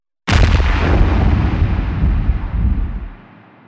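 A single loud explosion bursts in abruptly, followed by a deep, rumbling roar that lingers for about three seconds before fading away. No voices are present.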